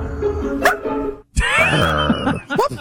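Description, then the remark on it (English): A man's voice imitates a wolf, giving sharp, high yips and a wavering, whiny howl in between, loud and strained, with a brief silence splitting the calls; he is yipping at a body of water. “I want to hear the wolf guy again because that yip is particularly good.”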